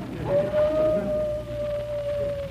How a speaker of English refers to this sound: Gotta leave you now. My wife's calling me. Sounds like a wolf.